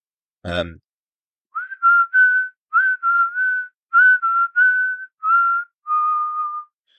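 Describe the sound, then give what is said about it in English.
A person whistles a short, wavering melody, imitating a scene from the film Alien: Covenant: a run of clear, steady notes in quick phrases, preceded by a brief sharp breath or mouth noise. “Netflix usually put clips of their stuff up on like YouTube and whatnot, but you know, I can do some whistling if you want.”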